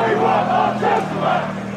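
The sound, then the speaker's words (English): A large crowd of Chelsea football fans chants and shouts outside their home stadium in West London on April 20, 2021, blocking traffic in protest against a new European Super League: a dense, steady roar of many voices with rising and falling sung cries, loud and continuous throughout. “Chelsea fans are blocking traffic outside their home stadium, protesting against the formation of a new European Super League.”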